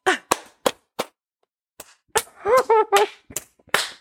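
A handful of sharp, scattered hand claps in an uneven rhythm, with a pause partway through and a brief high-pitched voiced cheer mixed in among the later claps.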